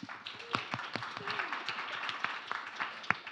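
A crowd applauds steadily, a dense wash of many hands clapping with a few sharper individual claps standing out, and a faint voice or cheer rising briefly underneath.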